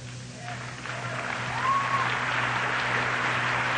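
Steady applause from an audience builds over a few seconds and holds, a dense wash of clapping with a few faint voices and a whistle-like tone mixed in.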